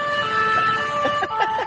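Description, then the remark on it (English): A loud European-style emergency siren sound effect wails steadily with sustained, harmonically rich tones over faint road noise, filling the short moment without any voices. “The sirens are on. That's right. Although I have the haughty European siren, though.”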